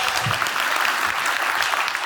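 An audience applauds steadily as a guest comes up to be interviewed, a dense crackle of many hands clapping at once that holds an even, fairly loud level throughout, with no voices over it.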